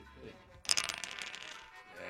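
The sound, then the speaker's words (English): Dice tumble and clatter close to the microphone, a sharp rattling burst of hard clicks that settles into a brief rolling skitter before stopping, the roll coming to 7. No one talks over it. “We allow him to roll the dice.”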